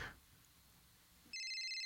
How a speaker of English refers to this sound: Oh, it looks like he's getting another notification right now.